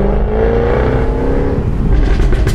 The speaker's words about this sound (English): Well, it's such fun. I am using the paddles at the moment, which means it is popping and crackling a lot more because I'm holding it in lower gears so you can hear the car.